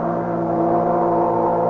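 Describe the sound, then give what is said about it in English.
A ship's all-ashore signal as a boat prepares to sail from New York: one long, steady, loud horn blast with a rich, low droning pitch that holds unchanged from start to finish, with no voices. “Well, there goes the all-ashore signal.”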